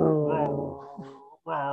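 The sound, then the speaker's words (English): A person growls like a monster, imitating a film creature growling like an animal as it carries a woman away: a low, strained, sustained vocal growl that breaks briefly and then picks up again, fairly loud, with no words spoken. “Meanwhile, he's like growling like an animal.”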